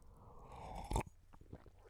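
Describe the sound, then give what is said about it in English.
A sip of coffee: a brief rising slurp that peaks sharply, followed by a few soft mouth clicks and a swallow. “I'm going to have a little sip of coffee right now.”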